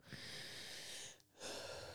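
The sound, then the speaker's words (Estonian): Heavy, breathy panting from a woman at the start of her seventh month of pregnancy: a long airy exhale, a brief pause, then another drawn-out breath, with no talking. “Ma tunnen täna, et ma hingeldan eriti.”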